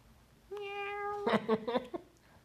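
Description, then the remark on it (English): A cat, Samson, lets out a long, steady meow followed by a few shorter, choppy meows, fairly loud, with no talking. “Are you a Kamala Harris cat?”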